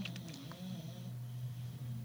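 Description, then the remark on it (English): A dog snores softly behind the speaker, a low steady rumbling breath that drones on without pause. No one speaks. “Can you hear the dog snoring behind me?”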